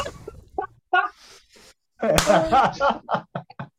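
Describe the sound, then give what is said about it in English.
One man claps his hands, a few sharp smacks in a quick uneven burst, mixed with excited voices and laughter-like sounds. “I can hear him clapping. Yeah, that's him clapping.”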